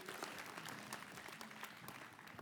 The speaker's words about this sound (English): Can we do that as they come back, as our worship team comes back? Can we give a thanks, offering, a hand clap offering to our worship team and all that they do?